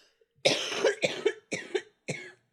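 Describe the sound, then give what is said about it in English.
A run of four harsh coughs in quick succession from a person still recovering from the flu, the first longest and strongest, with no talking around them. “Hang on, I have a cough.”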